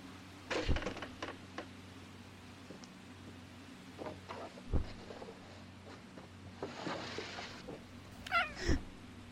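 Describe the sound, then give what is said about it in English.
A female cat gives a short, fairly quiet meow near the end, among scattered soft thumps and clicks over a low, steady background hum. Nobody speaks. “Good cat. Good girl.”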